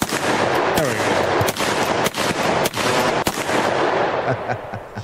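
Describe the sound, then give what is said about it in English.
Loud gunshot sound effects crack out in rapid succession, sharp bursts repeating roughly every half second over a dense, noisy rumble, with no talking. “Play those gunshots for us.”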